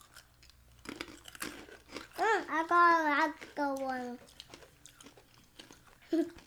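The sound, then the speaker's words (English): Crisp crunching of freeze-dried Skittles candy being chewed in bursts of brittle crackles, interrupted midway by a voice making a drawn-out sound and a brief spoken remark. “It tastes like less crunchy Skittles.”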